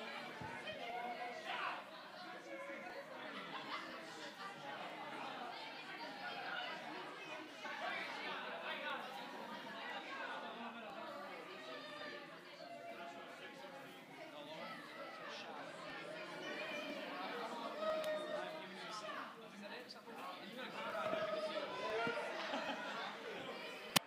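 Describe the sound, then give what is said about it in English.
A crowd of many children's voices chattering and shouting over one another as they come to say a verse, a steady, dense wall of overlapping calls that stays loud throughout with brief rises in volume. “I hear lots of shouting.”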